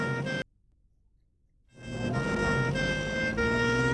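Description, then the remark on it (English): A loud ambulance siren wails over rumbling traffic as the ambulance brings patients to hospital, cuts out to near silence for about a second, then swells back in steady with a slightly rising tone. “Day and night, the ambulances are bringing the sick and badly injured to the hospitals.”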